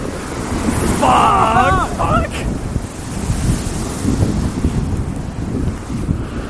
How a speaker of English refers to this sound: Them waves are pretty cool. That was actually awesome. I really like that. Cool. So with the noise of that ocean roaring behind us and the absolute pitch blackness of us walking underneath this canopy of trees towards the North Fort, it's actually